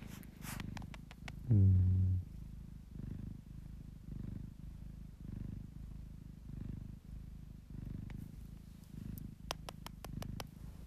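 A cat purrs while being held, in a steady, rhythmic rumble of regular pulses, with a brief louder burst near the start and a few soft clicks toward the end.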